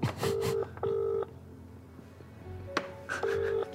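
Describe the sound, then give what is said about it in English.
Telephone dialing tones over a phone line while calling a KFC restaurant in Brisbane: three bursts of steady electronic tone, each roughly half a second, with a quiet gap and a short click between them. No one speaks. “all right, ring KFC Brisbane.”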